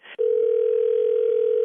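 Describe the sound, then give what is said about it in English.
A telephone dial tone hums steadily and loudly after a short burst of handset noise as someone dials the phone, holding one unbroken pitch with no voices present. “I'm going to dial the phone for you, okay?”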